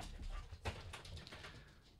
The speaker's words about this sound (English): The dogs are trying to get in. Hold on.